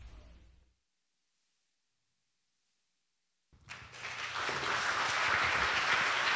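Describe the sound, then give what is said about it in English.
After a brief low rumble and a few seconds of silence, a church audience bursts into steady, dense clapping that swells and stays loud to the end, with no one speaking. “You can keep clapping.”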